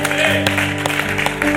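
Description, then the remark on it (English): A church crowd claps along in praise to God, in uneven bursts of sharp hand claps, layered over steady sustained musical tones that hold beneath the clapping throughout. “Come on, clap your hands.”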